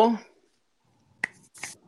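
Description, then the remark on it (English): A brief bit of speech fades out, then after a pause comes a single sharp, quiet hand clap, followed by a softer, breathier burst of noise. “I don't like that little sneaky, sinister clap you just did.”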